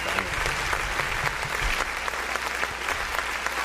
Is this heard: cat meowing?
no